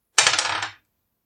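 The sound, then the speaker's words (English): A twenty-sided die, rolled to hit for an attack, clatters across a hard surface in a quick burst of bright, rattling ticks lasting under a second, then stops abruptly into silence. “And I need a d20.”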